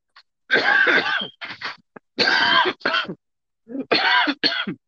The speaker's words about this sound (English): Cover your cough.